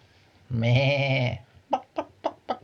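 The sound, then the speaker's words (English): A farm animal sound effect: a loud, wavering bleat like a goat or sheep lasts nearly a second, followed by four short, evenly spaced clucks or squawks from a bird, clear with no talking. “And in the hamlet was a farm.”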